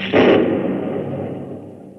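A sudden, loud crack of thunder bursts out, then rolls into a deep rumble that slowly fades over a couple of seconds, with no voices present.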